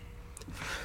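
A single short sneeze, a sudden breathy burst of hissing noise near the end of a brief, otherwise quiet moment, with no talking.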